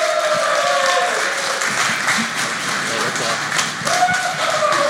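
An audience applauds steadily for the full five seconds as a guest speaker comes up to speak one morning, a dense wash of many hands clapping at an even, loud level, with a faint tonal whine drifting through in the background.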